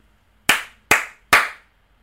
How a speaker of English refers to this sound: It was like two layers of snaps. What was the second three thing? Slaps. Yeah. We got that, right? Two snaps. And then in between, I don't know what that was. I started doing it, thinking it was a snap.